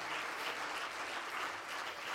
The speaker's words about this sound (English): Someone clap your hands to him right now.